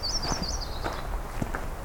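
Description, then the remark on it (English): A myrtle warbler sings a brief, high, thin trill of quick wavering notes that slows and fades within about a second, over steady background rustling and soft crunching steps. “That was a myrtle warbler.”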